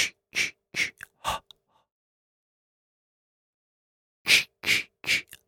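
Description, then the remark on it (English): A voice imitates the breathy whisper noise of the horror villain Jason, the noise heard in the woods when he is around: a quick run of five sharp, hissing exhaled bursts, a pause of nearly three seconds, then four more rhythmic breathy puffs. “Is that the noise he makes?”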